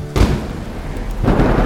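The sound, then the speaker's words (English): A sharp, loud crack of a lightning bolt striking a scarecrow with a sword tied to its hand bursts out, followed by a deep rolling thunder rumble and a second heavy surge of crackling thunder near the end. “As soon as it was secured, we all jumped back just before a lightning bolt struck Fergus.”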